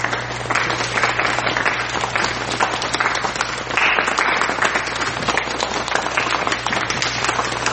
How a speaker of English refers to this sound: Actually, I gotta give y'all the golf clap. Let me stop this and give y'all the golf clap, because y'all deserve it. Y'all deserve it.